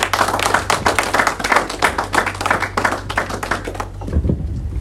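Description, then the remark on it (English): An audience claps hands in a dense, loud, rapid patter of overlapping claps for about four seconds, over a steady low hum, then the clapping stops abruptly and only a soft low rumble remains. “Come on, clap your hands.”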